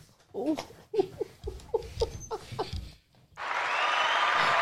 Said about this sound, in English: I'm gonna clap it for you, not for him.